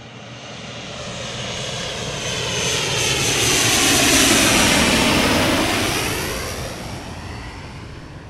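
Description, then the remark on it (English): A loud, rushing jet engine roar swells to a peak midway and then slowly recedes, like an aircraft passing overhead, with no voices. “And these hand dryers. What is with this jet propulsion engine one?”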